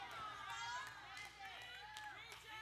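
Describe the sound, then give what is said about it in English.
A few scattered hand claps from about four people, sparse and uneven, come through a murmur of crowd voices and chatter rather than building into full applause. “Got about four people clapping.”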